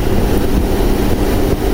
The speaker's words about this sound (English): You can already hear it beginning to hiss like simmering water in there. I think if you get it close, they can hear that.